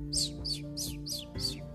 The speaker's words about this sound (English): That was Chirp. Chirp was a really pretty bird with lots of colors.